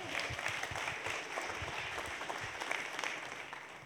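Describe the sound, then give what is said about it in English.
An audience applauds steadily to welcome a speaker, a dense wash of many overlapping hand claps at an even, fairly loud level that carries on throughout without any talking. “Now you can clap.”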